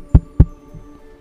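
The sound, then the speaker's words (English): Two soft, dull knocks on a door to a room, a quarter second apart, followed by quiet with a faint low hum and no voices. “So as you all then have these moments, sort of thinking to yourselves, I'm going to say Annabelle knocks on your door, Ander. Just a gentle...”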